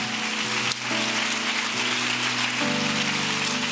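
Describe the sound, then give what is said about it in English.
A crowd at a camp worship gathering claps its hands to the Lord in a dense, steady wash of applause, with sustained musical notes shifting pitch underneath. “Come on, can you clap those hands a little bit louder?”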